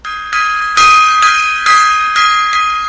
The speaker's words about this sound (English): Gong time.